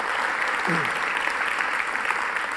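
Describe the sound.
A crowd breaks into steady applause, dense clapping filling the space evenly and loudly throughout, with a brief murmur of a voice underneath near the start.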